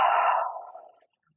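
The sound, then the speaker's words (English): A single slow exhale during a guided breathing exercise, soft and airy, heard on its own, fading gradually over about a second into silence. “And breathing it out.”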